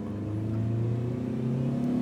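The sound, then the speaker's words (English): A car engine accelerates with a steady, rising hum as the car speeds off as fast as possible, its pitch climbing as it speeds up. It stays loud throughout, with no voices. “We hopped in the car and we sped off as fast as possible.”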